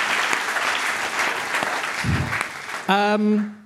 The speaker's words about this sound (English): But again, just the debaters, please, a round of applause one more time.